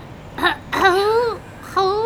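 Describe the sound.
A voice imitating the moans of a sick bloodhound, as a weird noise heard in an abandoned church, with reverb: a short whimper, then a long wavering howl that sags in pitch, and another mournful moan starting at the end.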